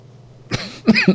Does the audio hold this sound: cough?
yes